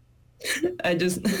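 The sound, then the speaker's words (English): A few short, pointed coughs, deliberate rather than from illness, blending into voiced, throaty sounds and a bit of strained vocalizing, moderately loud after a quiet start. “I'm just coughing because I'm like, he's not an individual.”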